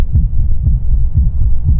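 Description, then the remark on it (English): A loud, muffled heartbeat thumps in a steady low rhythm, about four beats over a deep rumbling drone, with no voices. “As I walked towards the door, I could barely distinguish the beating of my own terrified heart from the thumping within the parcel.”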